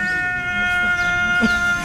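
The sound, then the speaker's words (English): A ram lets out a loud, sustained, strangely human-sounding scream that fills the whole moment, strained, with no talking over it. “Bob found a ram screaming like a human.”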